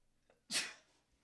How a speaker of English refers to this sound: That was a cute sneeze. You should have done it on air. Just sneeze into the mic.